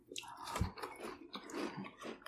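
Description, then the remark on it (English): Wet chewing and smacking mouth noises as a person eats, with a deliberately loud slurp, continuous and fairly loud over a couple of seconds, with a brief low thump partway through. “No, I made the slurp loud so that, to paint, like, a word picture, but with, like, sounds that I'm eating and chewing.”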